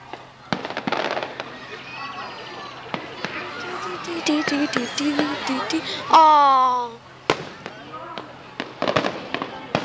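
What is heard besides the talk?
fireworks exploding at night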